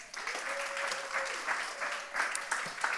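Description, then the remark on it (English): A church audience applauds at a pastor's request, steadily for about three seconds, a dense wash of many hands clapping at even loudness, with a faint sustained tone running underneath. “So can we just give all of those people a round of applause?”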